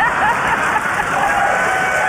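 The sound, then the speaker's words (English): A crowd applauds in a dense, steady wash of clapping, with high, drawn-out woos from one man rising above it. The cheering stays loud and even throughout, with no talking. “I'm getting applause now.”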